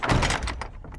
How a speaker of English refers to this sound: Quick, shut the door.